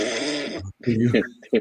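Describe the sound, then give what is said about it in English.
A person does a drawn-out, raspy imitation of a snore lasting about half a second, then a pause and a few short voiced sounds like talking or laughter. “She like, starts just to snore.”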